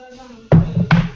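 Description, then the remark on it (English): Two heavy knocks on a door by someone delivering a package land a split second apart, loud and thudding, over a faint steady hum. “Boy, someone is at the door.”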